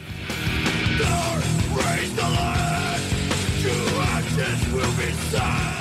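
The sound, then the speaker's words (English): Harsh screamed vocals over loud, dense distorted guitars and pounding drums, a continuous wall of heavy music with strained, raw shouting throughout. “It's all insane, they mumble, before breaking into some screaming, probably warranted given the subject matter.”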